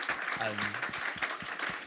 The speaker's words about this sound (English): Yeah, we deserve a round of applause.